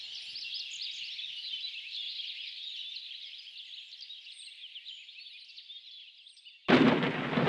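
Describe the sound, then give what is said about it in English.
A steady high chorus of insects or birds fills the air, then a sudden loud crack of thunder from a lightning strike deep in a forest bursts in near the end and keeps rumbling. “It begins with a lightning strike deep in the forest.”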